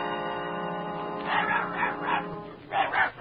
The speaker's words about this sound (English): Look, it's Dorothy's dog.